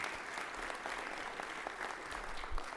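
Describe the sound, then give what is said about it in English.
A crowd applauds steadily at a graduation ceremony honoring students, a dense wash of overlapping claps at an even, moderate level that holds for about three seconds with no voices over it. “Absolutely, clap.”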